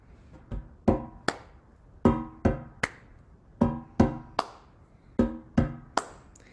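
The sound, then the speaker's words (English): Crisp hand claps in a repeating pattern of three, four groups in a steady rhythm, each clap sharp and bright with a short ringing tone, and no talking. “This song includes a familiar clapping pattern, so feel free to clap along with me.”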